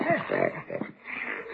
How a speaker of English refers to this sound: That isn't Leroy snoring. Zeke, he's got that dog under the bed.